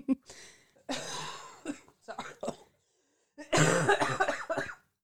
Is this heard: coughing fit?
yes